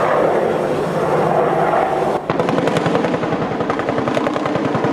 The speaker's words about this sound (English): Nearby, an Apache attack helicopter sprays gunfire at the ground target from a 30-millimeter chain gun.